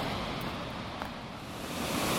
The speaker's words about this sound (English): Let me go look at the waterfall.